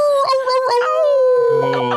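A dog woof sound effect, loud, stretched into a drawn-out, wavering howl that slowly falls in pitch over about two seconds, with no other sounds around it.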